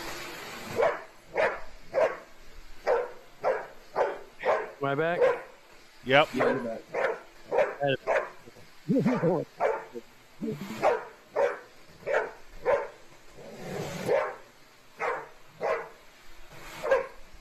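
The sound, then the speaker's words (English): A dog barks over and over at a vacuum cleaner in a steady, rapid rhythm, loud, while a person briefly talks between the barks. “They're literally torturing this dog with the vacuum!”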